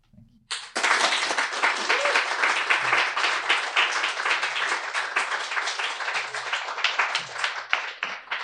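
An audience bursts into sustained applause after a reading, following a brief pause, many hands clapping in a dense, even roar that holds steady for several seconds without fading.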